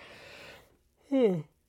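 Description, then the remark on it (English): A yawn: a long, breathy drawn-in breath, a brief pause, then a short voiced sigh that slides downward in pitch before trailing off. “Excuse me, I'm yawning.”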